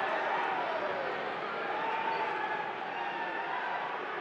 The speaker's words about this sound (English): He throws the left hand right into Rudy's face. Crowd chanting, Rudy.